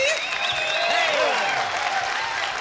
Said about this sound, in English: Thank you, ladies and gentlemen, buckaroos and buckarettes, for that warm round of applause.